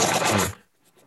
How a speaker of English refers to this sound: It just sounds like you're rummaging through a purse.